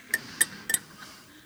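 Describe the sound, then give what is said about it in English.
Three or four quick, bright metallic clinks of finger rings against glass in a short cluster, each with a thin ringing tone, moderately quiet, with no talking. “And so every time these things clink on a glass, right?”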